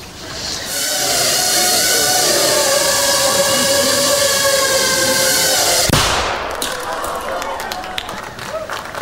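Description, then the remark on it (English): A steady, high whirring hum builds and holds for several seconds, then is cut off by a single sharp explosive bang from a tiny camera drone carrying 3 grams of shaped explosive, followed by scattered crackling and rustling noise. “That little bang is enough to penetrate the skull and destroy the contents.”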